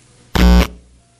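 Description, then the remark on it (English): A single loud, harsh buzzer blast played for emphasis, lasting about a third of a second, dense and distorted across the whole range, then cutting off abruptly into near silence. “It was not a buzzer wrong answer.”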